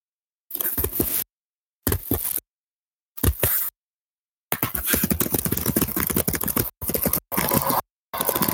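Bursts of rapid keyboard typing, clattering keystrokes in short runs separated by silences, then a longer steady stretch of typing followed by a few more quick bursts. No voices.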